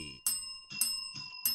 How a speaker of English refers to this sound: My bell's sounding a little struggly.